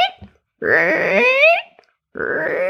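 A voice imitating a rumbling stomach with drawn-out, wavering moans and groans, two loud sustained bursts separated by a brief pause, with no other talk.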